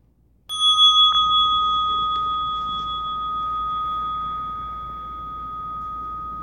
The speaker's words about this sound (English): And then opening your eyes to the sound of the bell.